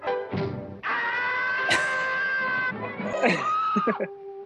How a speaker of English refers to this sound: That is a really powerful scream.